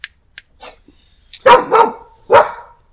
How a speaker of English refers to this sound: That's our guard dog. We're outside. And we need a protection tonight for the topic. She smells heresy.